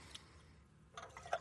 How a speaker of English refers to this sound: I'm going to give you 2 ounces of gin. I'm just pouring that in now.